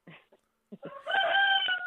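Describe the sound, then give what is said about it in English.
A rooster crows loudly, a sustained harmonic call lasting nearly a second, preceded by a few short clucking sounds. “Oh, and it sounds like the rooster likes it, too.”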